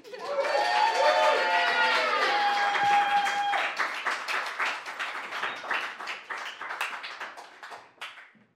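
An audience at a poetry night bursts into loud applause for two Mouthy Poets performers, mixed with cheers and whoops, a dense wash of clapping that gradually thins out into scattered, fading claps over several seconds.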